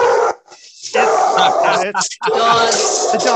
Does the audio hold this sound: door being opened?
no